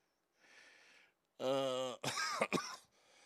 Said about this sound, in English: See, you sent me that, and now I'm coughing up the damn smoke. Thanks a lot.